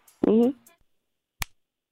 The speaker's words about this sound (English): So the first one that sounds like this is the shoulder slap.